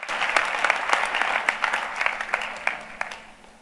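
A church audience claps steadily during a sermon about tithes and offerings, many hands making a dense, fast patter of sharp slaps that stays fairly even in loudness throughout, with a few louder individual claps standing out.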